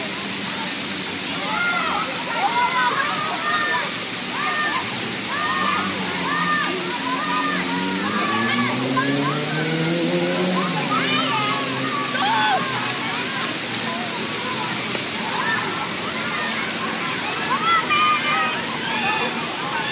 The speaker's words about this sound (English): And on this 80-degree day, dozens of kids from around the city have donned their bathing suits and brought their squeals of delight as the cool water refreshes and energizes.